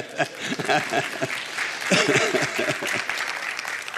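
A room full of people claps steadily for a few seconds, a dense patter of hands with a brief swell near the middle, with some voices mixed in underneath.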